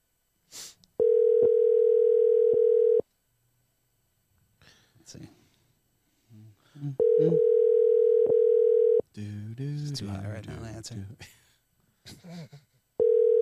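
An outgoing call rings with no answer: three loud, steady two-second ringback tones separated by long pauses, with quiet murmuring voices in the gaps between rings.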